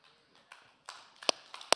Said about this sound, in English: Amen. Thank you. Somebody clapping for the Lord.